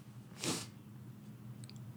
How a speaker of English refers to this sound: Excuse me, sniffling on the pod.